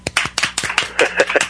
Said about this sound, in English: How about an applause for me again?